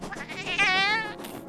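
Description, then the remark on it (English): Snacks the Cat, a black cat, lets out one long, wavering meow, fairly loud, with a quavering, almost bleating tone that rises and then trails off. No one speaks over it. “There's her performing puss, Snacks the Cat.”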